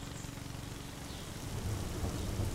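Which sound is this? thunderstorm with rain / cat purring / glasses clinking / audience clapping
thunderstorm with rain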